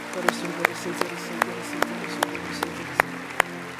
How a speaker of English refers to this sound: Let's clap hands for them as they come.